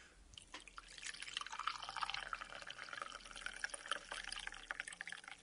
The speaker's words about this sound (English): We better pour this tea and see if it's drinkable. And now, for the moment of truth, we'll try and pour the tea out of the teapot.